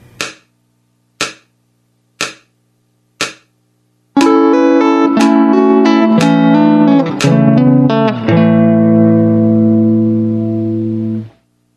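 Four sharp, evenly spaced clicks count in, then a slowed-down clean electric guitar lick plays a few sustained, ringing notes on its own, settling into a long held chord at the end.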